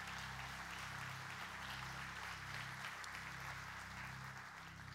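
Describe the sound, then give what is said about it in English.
An audience at a morning church service claps steadily for several seconds in applause for the speaker and for the word, a dense, continuous wash of many hands applauding with no voices on top, under a low steady hum. “a good hand clap this morning”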